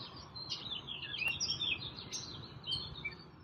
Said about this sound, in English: It's very quiet. I mean, you hear a car, you know, driving by once in a while, but you hear the birds. You hear them chirping, singing in the background.